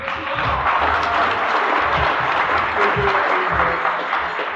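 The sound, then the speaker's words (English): An audience at a religious meeting claps steadily to welcome a man up to speak, a dense and sustained wash of many hands at even loudness, with a few low murmurs underneath throughout. “Give him a clap.”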